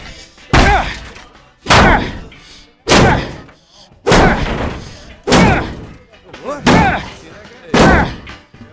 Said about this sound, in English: He's hammering the shit out of his truck.